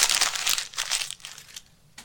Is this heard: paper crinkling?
yes